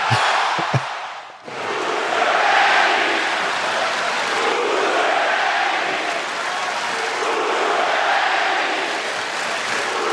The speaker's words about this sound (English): Crowd was hot last night. Now, yeah. Here's the question. Is there any chance that there was less piped in noise last night on the TV broadcast? I think so. I mean, I think so. Unless they had that "Who's your daddy" chant like ready to go, lined up